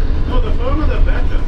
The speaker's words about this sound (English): This must be the oldest bus in the system. It's sort of like a hybrid of a transit bus and a school bus in this design.